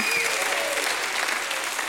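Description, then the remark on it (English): A crowd gives a hand clap and a shout of praise to God, applauding loudly and steadily, dense clapping filling the space, with scattered shouts and whoops rising briefly over the noise. “If God has been faithful, give him a hand clap and a shout of praise.”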